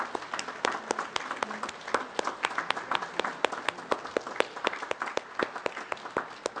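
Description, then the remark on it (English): A church audience applauds together, the men giving a dense, steady round of clapping from many hands to honor the standing women, evenly filling the space and holding at a moderate level throughout, with no voices rising above it. “And as you stand, let the rest of us of the male gender give them honor and a round of applause.”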